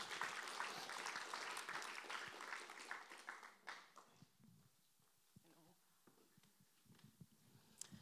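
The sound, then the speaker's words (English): An audience applauds as a person is invited up to give a testimony, a dense, steady burst of clapping for several seconds that then thins out into a few scattered claps and soft room noise. “Round of applause for Maddie.”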